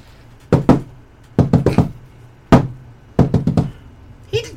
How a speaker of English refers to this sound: This is where my friend lives. I'll knock on the door.